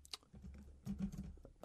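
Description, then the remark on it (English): Soft, irregular clicking of someone typing on a computer keyboard, a handful of quick keystrokes in uneven bursts, fairly quiet and with no voices. “I could talk about the weather while I'm typing.”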